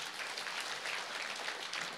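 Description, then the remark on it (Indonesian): Steady applause from an audience, a dense wash of many hands clapping at moderate volume, continuous throughout with no voices standing out. “Tepuk tangan dulu buat.”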